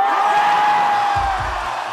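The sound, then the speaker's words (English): A live concert audience cheers in a loud, steady roar, with a sustained whistle held through most of it and a couple of dull low thumps of foot stomping near the end. “I've here elected to play for you the live version of the song, with all of its foot stomping and audience cheering.”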